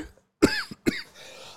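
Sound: cough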